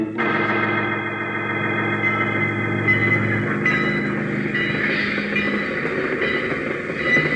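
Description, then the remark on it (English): A train rolls along the tracks, a steady loud rumble layered with droning tonal hums that shift partway through, as if drawing closer. No one speaks. “Oh, a train, huh?”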